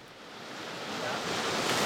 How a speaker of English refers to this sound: As we approached, the sound of melting water rushing off the glacier turned into a roar.